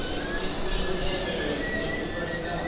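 A subway train rumbles steadily with wheels squealing against the rails, a sustained high-pitched screech riding over loud low-end roar throughout, continuous with no voices.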